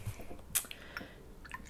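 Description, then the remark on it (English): William's Chase Pink Grapefruit Gin poured into a shot glass, heard as a quiet run of small wet splashes and drips with one sharper clink-like burst partway through, brief, with no talking. “And, well, I'm not going to sniff it before I pour it into the thing.”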